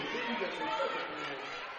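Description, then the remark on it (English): Dense crowd chatter fills a nearly full basketball arena during the second half of a game, a steady wash of many overlapping voices with no single speaker standing out, holding an even, moderate loudness throughout. “Good crowd on hand. It's almost full.”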